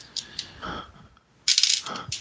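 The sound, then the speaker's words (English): Dice clatter across a hard tabletop as two six-sided damage dice are rolled: a few light taps and a short roll, a brief pause, then a louder, busier tumbling rattle that settles with a final click. “So you want to roll your damage, 2D6, plus your deed, whatever your deed roll was.”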